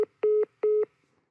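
Two short, steady electronic telephone dial tones beep in an even rhythm, each lasting about a fifth of a second, after a tiny clipped blip at the start; clear, with no voices.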